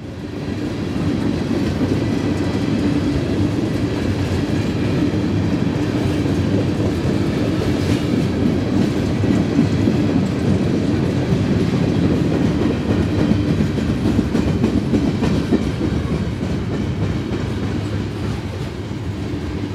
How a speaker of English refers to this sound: That was part of a very long train crossing a road in Auburn, Indiana, just north of Fort Wayne.